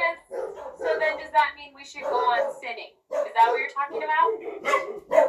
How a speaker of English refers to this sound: Sorry, dog barking.